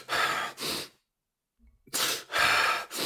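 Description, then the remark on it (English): Two quick, loud breaths, then nearly a second of held silence before a sharp gasping inhale and a heavy exhale, with no talking. “We stop breathing. We just stop breathing. And then we go.”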